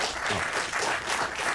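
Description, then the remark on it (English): Steady, dense applause from an audience after an election campaign speech, a continuous crackle of many hands clapping at even loudness throughout, with no distinct voices standing out. “I think the applause is for you, Scott.”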